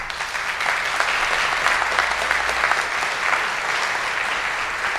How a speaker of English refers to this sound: Can we give the people who are listening on podcast a round of applause? Maybe you guys can hear this.